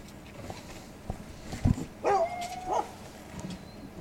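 A hunting dog gives a single sharp bark, then lets out a drawn-out, high whining whimper that rises and falls for under a second, over faint outdoor background noise with no talking.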